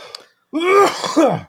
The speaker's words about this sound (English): This coughing is not the water. It's my charge with myself over not completing Rupert Sheldrake's video project.